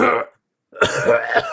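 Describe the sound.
A voice acts out a harsh, throaty coughing fit of someone coughing up blood: a rough burst, a short pause, then several rapid hacking coughs with no other sounds.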